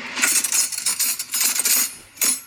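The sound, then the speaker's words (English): Forks being frantically grabbed and jostled: a busy, continuous metallic clatter of bright clinks and jingles over a couple of seconds, ending with one last short rattle, with no voices. “You're just frantically grabbing cutlery, though.”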